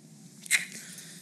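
A single brief, crisp crinkle as one of three plastic bottles of purified water is squeezed or grabbed, rising over a faint steady low hum and then fading.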